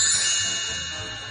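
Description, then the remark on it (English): A bright chime announcing listener mail time rings out once and sustains, its shimmering metallic tones slowly fading over about a second with no voices. “And without further ado, the chime says, listener mail time.”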